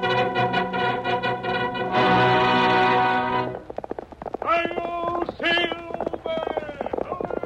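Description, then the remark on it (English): Rapid galloping hoofbeats drum beneath loud, bold fanfare music, the William Tell Overture, in the opening of the old-time radio program The Lone Ranger. The music then gives way to rising and falling voice-like calls over a continuing rhythmic clatter. “Fiery horse with the speed of light, a cloud of dust, and a hearty "Hi-yo, Silver!"”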